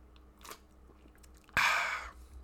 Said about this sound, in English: I'm on a healthy diet right now, so I'm drinking organic beer. Have my Coors Organic.